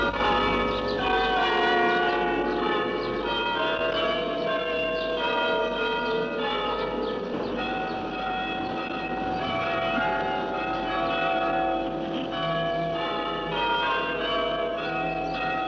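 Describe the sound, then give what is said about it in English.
The clock bells of Derby's cathedral chime out a tune, one ringing note after another with overlapping, sustained tones that hang and blend together. The steady, loud peal continues without any voices. “Derby is not a city, but it has a cathedral. Its clock plays a tune at 9 o'clock each morning.”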